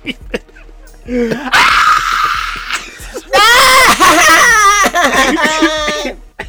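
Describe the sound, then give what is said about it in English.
A person screams and cries loudly in two long, strained wailing bursts, with ragged sobbing breaths and whimpers between them. “screaming. He settles down.”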